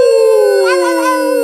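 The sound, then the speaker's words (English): A person imitates a dog's howl as the on-air lead-in for radio station 694.2 PTBP, a single sustained, slowly falling vocal wail with a rich harmonic tone, loud, with a slight wavering in the middle. “hand it over to …. Ow! Ow!”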